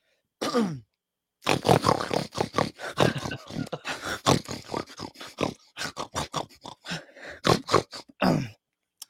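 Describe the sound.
A person loudly imitates a pig for about 15 seconds, letting out a rapid string of grunts, snorts and squeals into the microphone, with a brief pause near the start and no other talking.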